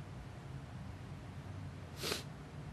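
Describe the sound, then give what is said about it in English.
A single quick sneeze bursts out near the end, sharp and breathy, over a quiet, low hum with no talking. “Lord bless you.”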